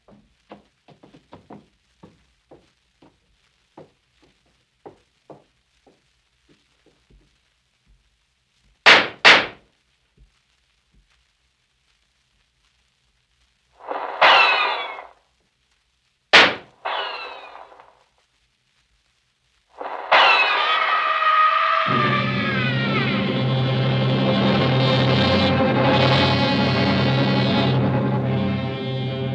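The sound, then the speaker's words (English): Scattered rifle shots ring out in a battle: faint pops at first, then a few loud, sharp cracks, before a dense, continuous wall of sound swells up and holds. “Dusk, the firing ceased altogether.”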